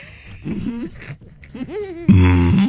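A man clears his throat in a series of rough, voiced grunts and rasps, building to a louder, harsher final burst near the end.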